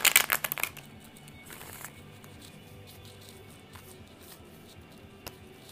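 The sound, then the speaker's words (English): A deck of cards is shuffled for the fire signs Aries, Leo and Sagittarius: a quick, crisp riffling burst at the start, a shorter flutter after it, then near silence broken by a few faint taps. “We're shuffling the cards.”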